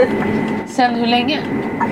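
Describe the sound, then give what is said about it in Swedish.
Steady low rumble of a moving train heard from inside a carriage, continuous and fairly loud, with faint voices and a brief tonal squeal mixed in. “Som åker tåg, sen vill göra lite podcast.”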